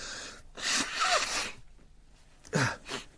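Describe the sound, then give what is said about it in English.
Someone with a congested, bunged-up nose blows it in two bursts: a long, loud, breathy honk followed by a shorter, sharper one after a brief pause, with no talking. “I'm going to blow my nose. I'm so bunged up.”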